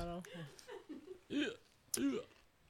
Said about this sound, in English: I have the hiccups now.